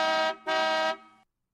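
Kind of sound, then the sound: vehicle, car horn honk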